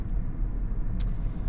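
Steady low road rumble heard from inside a moving car on the drive to work in light traffic, a continuous engine and tire drone with a brief hiss midway, no one speaking.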